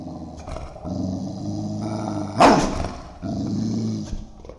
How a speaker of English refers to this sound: And I see my dog backing away from the basement stairs with her hair up and growling very loudly.